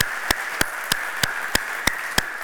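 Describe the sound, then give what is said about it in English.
A church audience applauds to thank God for the mosaics, the younger generation among them, in a steady, hissing wash of clapping, with sharp, louder claps cutting through at an even, regular beat about three times a second. No one speaks. “Can the rest of us, just with our applause, thank God for the mosaics among us and God entrusting the church to them?”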